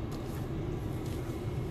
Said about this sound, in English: Revving up their bikes. Coming out in force.